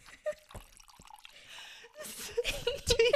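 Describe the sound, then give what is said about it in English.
Spilled liquid dripping: a series of small, bright plinks and plops that start sparse, then quicken into an irregular patter, with some splashy, wet clatter mixed in toward the end. “Oh man, I just spilled this shit.”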